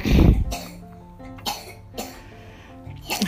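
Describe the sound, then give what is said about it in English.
A young boy coughs several times in short, harsh bursts, starting loud and repeating at irregular intervals, with a faint tonal hum in the background between coughs. “As my son's coughing in the background.”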